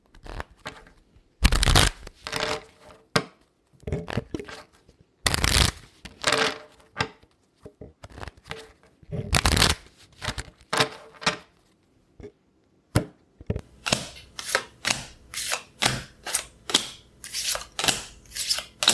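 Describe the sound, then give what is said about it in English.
Playing cards are riffle-shuffled in three loud, crackling bursts, followed by a quick run of crisp, evenly spaced snaps as cards are dealt face down one after another, much like in Texas Hold'em, with no one speaking. “Actually, she said she wanted us to put the two cards she dealt face down into our pockets without looking at them.”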